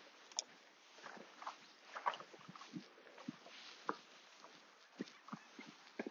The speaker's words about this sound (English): Dog barks in the distance.